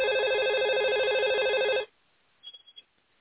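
Max's phone rings well past midnight on a starless night with a loud, warbling trill for a little under two seconds, then cuts off abruptly, leaving near-silence broken by a few faint, brief clicks.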